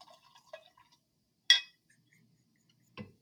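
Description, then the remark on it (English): Wine glugs briefly into a glass, followed by a single sharp glassy clink and then a soft knock, with no talking. “And more wine”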